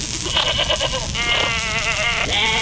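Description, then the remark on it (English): Several goats bleat loudly in overlapping, wavering cries, one call after another with barely a pause, over a steady background of herd noise. “To use emergency speed-up device, apply glowing end to goat's rear end, and we promise the herd will move.”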